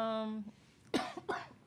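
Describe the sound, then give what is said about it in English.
A brief hum-like vocal tone trails off, then a woman gives two sharp, harsh coughs about a third of a second apart, moderately loud. “I guess the cough. And she's coughing up her...”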